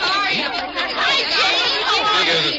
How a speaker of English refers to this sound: When they open those doors out there, there's a mad scramble for the ticket booth. Usher says it's a real stampede.